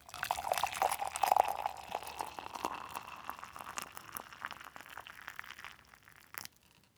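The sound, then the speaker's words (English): Hot water pours steadily into a cup for several seconds, 12 to 14 ounces mixed with a single-serve packet of instant tea, a continuous splashing rush that gradually softens, ending with a brief clink near the end. “And the instructions here are you simply mix it with 12 to 14 ounces of hot water.”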